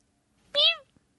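A single short cat meow, clear, with a slightly falling pitch, heard on its own against quiet background and followed by a faint tap.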